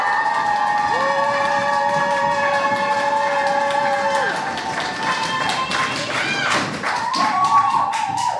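A crowd at a poetry slam applauds steadily and loudly throughout for the next poet of the evening, dense clapping mixed with whoops, shouts and sliding whistles rising above it, the cheering swelling again near the end.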